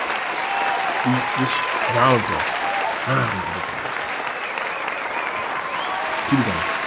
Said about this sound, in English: We need a round of applause for Julio Jones. Round of applause for Julio Jones. Finally scored a touchdown. Round of applause.